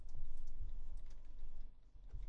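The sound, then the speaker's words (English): Slow, uneven hunt-and-peck typing on a small keyboard: scattered single key taps with irregular pauses between them, fairly soft over a low steady background hum. “Do you ever type like a regular keyboard on there, or is it pretty much all hunt and peck?”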